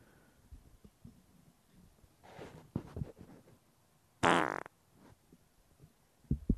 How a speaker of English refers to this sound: That fart was for you, Jeff. Thanks. All I heard was for you, Jeff. Oh. I saw you put your mic up to your ass, though, so I assumed it was a fart.